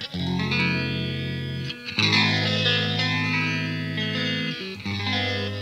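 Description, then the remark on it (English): Sustained, slightly overdriven electric guitar chords run through a phaser, a slow swooshing sweep moving across the tone. The chord changes twice, fairly loud, with no voices. “Phaser.”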